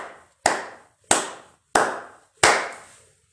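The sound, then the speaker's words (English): Four sharp hand claps, evenly spaced about a second apart, each loud with a short ringing decay, and no voices. “Let me just lay down the phone and clap hands.”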